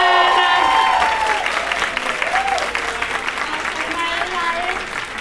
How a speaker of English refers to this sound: Ladies and gentlemen, thank you, thank so, you much. So much. Let's give Alison Roman a huge Roman. Round of applause.